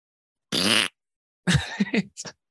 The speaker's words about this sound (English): I fart. You butt queef?